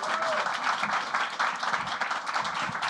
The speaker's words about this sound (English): Give a round of applause, Natasha.